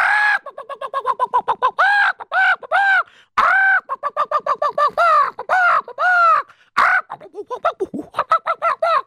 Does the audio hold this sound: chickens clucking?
yes